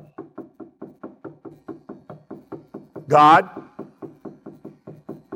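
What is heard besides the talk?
repeated knocking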